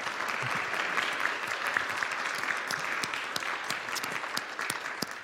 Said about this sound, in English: Can we applaud for that?